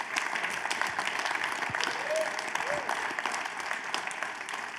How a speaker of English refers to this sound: Please give them a round of applause or a woo for Karina if you would like.